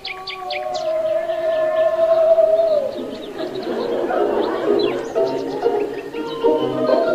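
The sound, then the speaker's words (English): A cuckoo clock calls at 2 a.m. with steady, hooting tones, followed by a busier stretch of overlapping chirpy sounds and background hiss, all moderately loud with no voices. “It's a cuckoo clock, Gert.”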